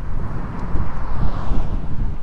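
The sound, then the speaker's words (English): Steady wind buffets an outdoor microphone, producing a continuous low rumbling roar with uneven gusty surges and no voices. “Damn, it's windy out here.”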